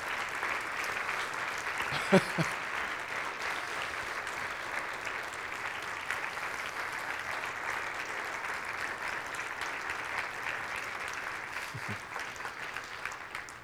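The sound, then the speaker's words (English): An audience at a church service applauds steadily for over ten seconds for a departing member, a dense wash of clapping hands, with a brief cheer or voice breaking through near the start. “So everybody, give a round of applause for Brandon in the back there.”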